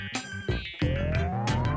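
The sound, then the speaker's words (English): A fire truck siren winds up in a steadily rising wail over a deep engine rumble, loud, with no one talking. “So, what's that sound? Shout it out. A fire truck siren.”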